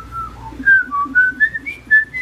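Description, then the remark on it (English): A starling whistles loudly, a run of clear, pure notes that step upward in pitch, with no talking over it. “Starling. A starling.”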